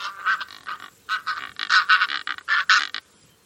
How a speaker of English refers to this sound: Here's another bird call. This is the Cape Barren goose from Australia.